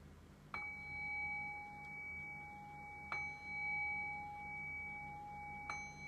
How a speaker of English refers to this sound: And in the next breath, we'll begin to shift away from the meditation and back into our conversational space. And so I'll cue that by ringing the bell 3 times.